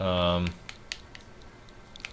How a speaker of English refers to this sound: Typing in the name Shantae is so hard, especially capitalizing it. It's so very difficult.